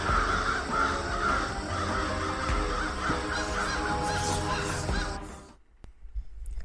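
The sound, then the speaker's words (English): A dense, overlapping chorus of many crows cawing at once, loud, with harsh calls piling over each other for about five seconds before cutting off abruptly to near silence; multiple layers were added in Audacity to make it sound like a lot of crows. “So with Audacity, I was able to add multiple layers to make it sound like there were a lot of crows.”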